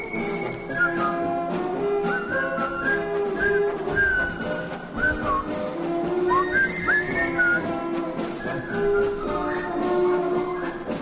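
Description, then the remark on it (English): The march tune from the film The Bridge on the River Kwai is whistled clearly and continuously from start to finish, loud, with a steady band-like accompaniment underneath and no talking. “And apparently I ran out of air. Apparently you whistled it”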